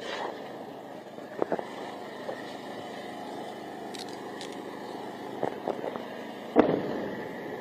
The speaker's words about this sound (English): You're going to see some interceptions taking place. There's mortar fire, rocket fire coming off the Gaza Strip right now. There are going to be some loud explosions. Don't be alarmed. Those are interceptions. There you go. Just listen here.